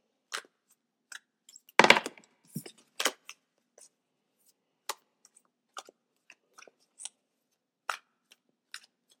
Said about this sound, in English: you could hear me shuffling the cards and everything